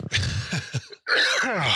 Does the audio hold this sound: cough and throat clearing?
yes